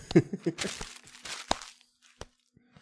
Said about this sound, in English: Rip this paper, throw the shit out.